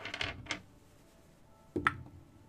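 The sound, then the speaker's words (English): Umbral Oculus dice clatter across a hard surface in a few quick bursts: a rattling cluster, a single click, a quiet pause, then one louder tumbling clack, for a total roll of 16. No voices. “The best roll that I've rolled with Umbral Oculus dice.”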